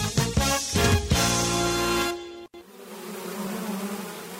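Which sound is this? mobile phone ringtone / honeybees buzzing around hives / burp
honeybees buzzing around hives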